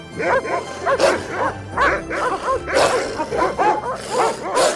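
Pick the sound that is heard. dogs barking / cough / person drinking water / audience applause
dogs barking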